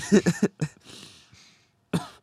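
A short burst of quick, clipped coughs, like a stifled half cough, followed by a breathy exhale and a brief pause before another throaty sound.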